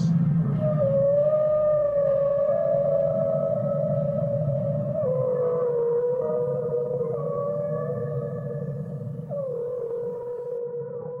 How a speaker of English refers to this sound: They messaged voices and tastes and smells and images and worlds and words and screeching sounds and the songs of the great whales in the sea, our brothers and sisters.